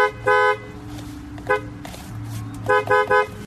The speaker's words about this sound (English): Your horn does sound different than my horn. You think so? Yeah, play that horn and then play the first horn. That is much songier.